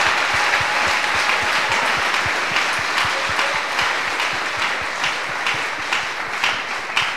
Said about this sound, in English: Dans les autres, acclamez parce que c'est eux qui ouvriront leur bouche. Acclamez pour prendre part. So clap, clap now, clap. To share their joy.